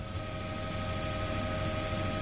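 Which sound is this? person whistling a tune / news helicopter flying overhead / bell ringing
news helicopter flying overhead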